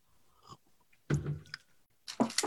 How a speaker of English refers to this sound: then take a second sip of whiskey